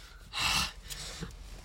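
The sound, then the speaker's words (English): A sharp, heavy gasp of breath, loud, followed by a couple of softer breathy inhales. No talking. “Why are you stop. Breathing like that?”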